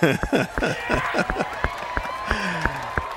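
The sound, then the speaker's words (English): An applause sound effect: sharp, uneven hand claps ring out over a cheering crowd, with high whooping voices rising and falling throughout. “It's like Eric Andre level of applause.”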